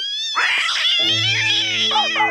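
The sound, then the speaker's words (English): A pet, Loopy, howls at the table in one long, loud, wavering cry that slides up and down in pitch, with a low steady hum joining underneath partway through. No one speaks. “And no howling at the table, Loopy.”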